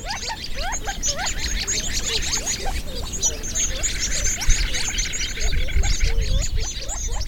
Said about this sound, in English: But right along with that wren is the gambel's quail call.